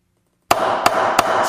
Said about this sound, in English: So we know that I'm a horrible judge, despite my judge's hammer.